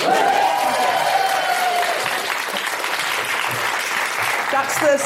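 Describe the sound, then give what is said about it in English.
A sold-out live theatre audience, limited to 80% capacity after the pandemic, bursts into steady applause, a dense wash of clapping with scattered whoops and cheers rising above it, holding at a loud, even level throughout. “No, when I say sold out in a post-pandemic world, you need to clap.”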